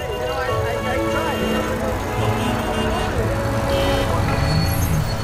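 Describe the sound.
Steady, dense road traffic rumbles throughout, a continuous wash of engine and tire noise, with voices talking faintly underneath.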